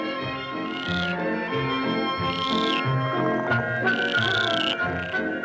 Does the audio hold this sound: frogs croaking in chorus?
yes